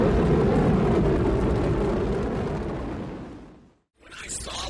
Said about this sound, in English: Shuttle lift off like that, my heart started beating faster as that fire shot out of the thrusters.